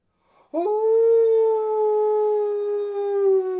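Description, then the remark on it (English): A great howling cry bursts in suddenly and loud, holding one long, steady, wavering note for about three seconds with no talking around it. “a great howling cry resounded.”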